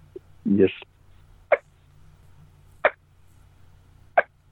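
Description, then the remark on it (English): Soft hen turkey pops made on a call: after a brief whiny note, three short, crisp pops come at a slow, even pace over a faint low hum. “And just envisioning that hen standing at 20 yards from you out there, you know, and she's just making a little soft pop.”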